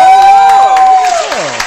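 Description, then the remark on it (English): A crowd cheers and applauds, with a loud, steady high whistle held over the noise before it slides and fades, and a few sharp claps standing out from the din. “Y'all give yourself a round of applause.”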